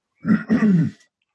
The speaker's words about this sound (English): I didn't know if you're done or if you're just coughing.